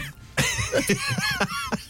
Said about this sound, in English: Oh, do you have to cough every time?